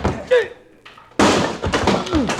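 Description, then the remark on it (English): A sudden loud crash as a chair strikes a man and knocks him down, a heavy thudding impact followed by clattering and strained grunts and cries. “You knocked him down with the chair.”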